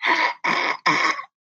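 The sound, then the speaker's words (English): Three harsh, raspy coughs in quick succession from a person with a chronic cough, each lasting under half a second with brief pauses between, fairly loud with no talking. “I have this chronic cough, so trying to figure out what's going on with that. So if I start coughing, you know why.”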